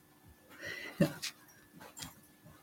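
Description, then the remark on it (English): An Australian Shepherd Border Collie mix dog whimpers in a few short, high-pitched whines and yips, scattered over a couple of seconds and fairly faint, with no one talking. “My dog, he is loud.”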